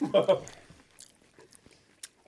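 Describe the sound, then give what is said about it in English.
Chewing on a whole spicy hot chip put in the mouth at once: a loud burst of crunching at first, then quieter, sporadic crisp crunches and mouth sounds trailing off over a couple of seconds. “Hey, hot chip. Yes. All of it in your mouth at once.”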